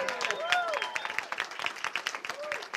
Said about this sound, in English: I also want to thank our great chairman, Nick Langworthy. Let's give Nick a big round of applause.